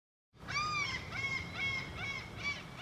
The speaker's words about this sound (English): As you can hear, I'm near the ocean. In fact, I'm at the docks looking for a boat to take us all out to sea.